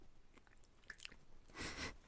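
Someone munching food, with a few soft crunchy bites early on and a louder, longer burst of chewing near the end. No one speaks.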